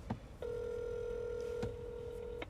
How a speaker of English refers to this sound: Paige, we are ringing you.